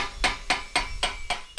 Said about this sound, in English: I'm chipping away the old paint.